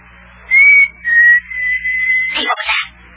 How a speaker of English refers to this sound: Did you hear a whistle? Sound like a signal. Oh, that was Rabbit Ears whistling. I know good old Rabbit Ears whistle anywhere.